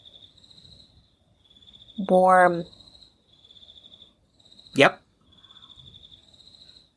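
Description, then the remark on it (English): A steady, high-pitched chorus of crickets chirps in pulsing trains throughout, outdoors late at night, while two people exchange a couple of brief words over it. “The crickets are soothing.”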